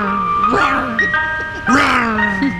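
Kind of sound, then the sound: vehicle, ice cream truck jingle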